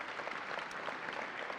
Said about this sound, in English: I just feel especially grateful this morning for the awesome volunteers that we have across our Sunday morning worship experience. So can you actually take a second and give them a round of applause just for their service?